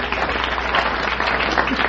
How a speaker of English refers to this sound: Say, plumbers always get applause here.